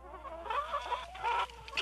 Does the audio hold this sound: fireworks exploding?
no